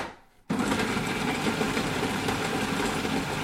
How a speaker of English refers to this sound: Oh, I haven't whizzed the onions. Whizz the onions.